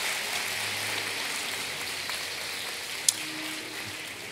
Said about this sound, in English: Praise the Lord, everybody. God's been good to you. Put your hands together. Come on, let's give God a clap offering of praise.